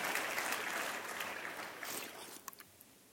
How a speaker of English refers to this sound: If you're going to applaud, applaud. To the glory of God.